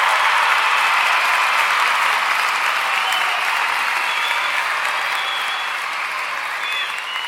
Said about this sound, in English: You're getting another round of applause.